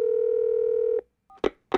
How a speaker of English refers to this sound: There we go, it's ringing.